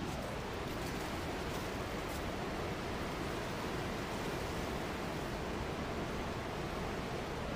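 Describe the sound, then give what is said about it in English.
Loud, steady roar of rushing floodwater from a swollen river, a dense continuous wash of churning water with no pauses and no voices. “But let's take a look at the river now and see how bad it is, how much worse it is today than it was yesterday.”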